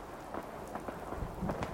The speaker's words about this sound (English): Where is everybody? It's raining out right now. At least it's not a green storm.